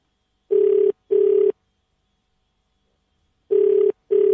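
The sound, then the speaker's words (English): An outgoing call's ringback tone sounds in two pairs of short, steady buzzing rings, separated by a long silent gap, clear with no voices. “Let's just try it again. For luck.”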